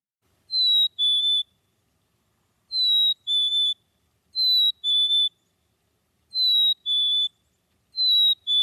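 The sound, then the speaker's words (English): Black-capped chickadee song: a clear, high two-note whistle, the first note slightly higher than the second, repeated five times at a steady pace with short pauses and no talking. “So again, when you go out early in the morning, typically good to do this early in the morning, you're going to hear this noise, black-capped chickadee.”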